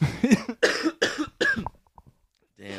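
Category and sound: human body sound, two people coughing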